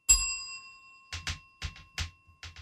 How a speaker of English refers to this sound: I'll ding the bell if you're wrong, like a spelling bee.